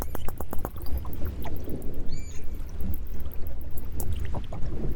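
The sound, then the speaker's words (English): Underwater recording of orca sounds: a series of sharp, irregular knocks and clicks over a steady low rumble, with one brief high whistling call partway through. “So yeah, you can hear these knocks, these low frequency knocks.”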